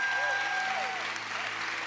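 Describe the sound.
An audience applauds in a dense, steady roar of clapping that stays loud throughout, with a few thin whistle-like tones and indistinct voices mixed into the noise.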